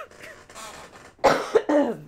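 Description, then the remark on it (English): A person who is under the weather coughs several times in quick succession, fairly loud, with a couple of sharp bursts after a quieter, breathy lead-in. “I did tell you guys that I'm kind of under the weather. So that's why I'm coughing, if you're wondering,”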